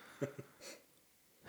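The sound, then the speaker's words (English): A man's short, breathy exhale close to the microphone, with a couple of soft low puffs just before it and another breath starting at the end; quiet overall, no speech. “He's also a heavy breather.”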